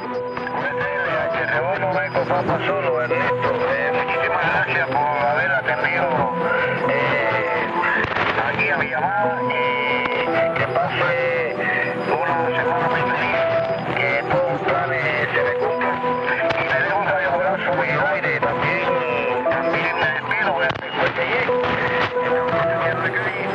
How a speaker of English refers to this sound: These are dueling transmitters from Spanish ham radio operators, slow Morse code, and the voice of the Islamic Republic of Iran.